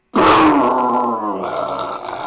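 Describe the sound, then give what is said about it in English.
A voice imitates a Chevy Beretta car starting after it lost its muffler: a loud, rough, throaty rumble that starts abruptly and holds steady, buzzing and sputtering for about two seconds. “It sounded like a Beretta when he started it. Lost its muffler.”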